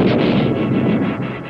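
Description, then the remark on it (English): A sonic boom from Chuck Yeager breaking the sound barrier in the Bell X-1 Glamorous Glennis, the first human to do so: a loud, deep, rolling rumble that keeps going for over a second, surging in slow waves, with no voices. “And he does it, the first human to crack the sound barrier.”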